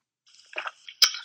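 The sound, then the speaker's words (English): Quiet gulping and wet mouth sounds as someone swallows water, then a single abrupt sputtering choke bursts out near the end. “As you asked that question, I was, like, swallowing some water, and I had, like, a little choke moment.”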